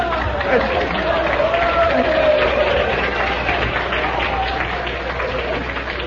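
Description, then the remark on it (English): A live audience claps and murmurs in a steady, dense wash of noise that holds for several seconds, with indistinct voices mixed into the crowd reaction. “Boy, is this ever an aggressive crowd.”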